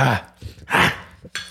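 A person coughs twice in quick succession, with harsh, raspy bursts separated by a brief pause, over faint background voices and clatter.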